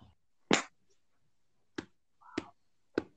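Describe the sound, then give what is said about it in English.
A wallet smacked against a knee four times at uneven intervals: sharp, dry slaps with the first the heaviest and the rest crisper and lighter. No one speaks. “I'm smacking my wallet against my knee.”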